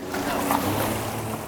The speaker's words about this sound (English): The boat rounds a point, and there's Lahaina, a big black and gray scar where buildings once stood.